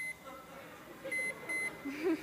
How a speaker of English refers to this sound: And I'm sure you know how to program a microwave. Go ahead and shut that. Why don't we, just for fun, let's put it on for 2 minutes.